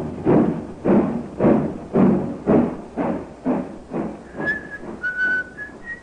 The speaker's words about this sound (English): He's whistling merrily, a man with nothing on his mind except his love affair and the prospect of the week ahead.